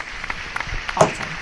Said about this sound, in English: I'm going to play the applause.